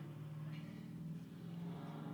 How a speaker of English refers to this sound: Loud ass car.